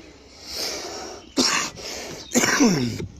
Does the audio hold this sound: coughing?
yes